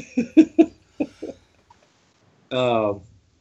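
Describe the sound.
A quick cluster of harsh coughs, three in a rapid run, then two more after a brief pause, followed by a longer strained, voiced throat-clearing groan.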